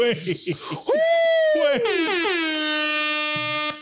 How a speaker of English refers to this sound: Air horns.